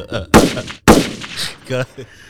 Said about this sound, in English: Gunshots, nigga.